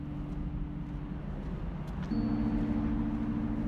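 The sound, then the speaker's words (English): A steady, low road-traffic roar with a faint engine hum, continuous throughout and swelling slightly toward the end rather than dying away; no voices. Traffic heard on entering Langley Lane, near Vauxhall. “As you enter the street, the roar of traffic begins to deaden.”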